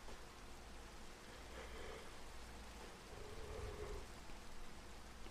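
Steady rain falls in an even, hissing wash with no voices, holding at a soft, constant level throughout with only slight swells in intensity.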